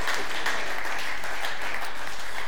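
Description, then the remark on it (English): A crowd claps steadily and continuously, giving a man a round of applause one more time: a dense, even wash of many hands with no pauses and no voices. “Can we give it a round of applause one more time for him?”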